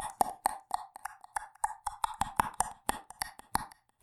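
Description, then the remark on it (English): A voice imitates clicking with a rapid, uneven string of about fifteen sharp mouth clicks over four seconds, each crisp and mid-pitched with a slightly hollow tone, and no speech around them. “And there's this like clicking noise, like.”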